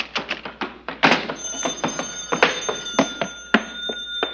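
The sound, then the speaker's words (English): A telephone rings with a sustained, high metallic tone that starts a little way in, over a steady run of irregular thumps and clatter. No one speaks. “the telephone. Maybe it's no Dice Noonan.”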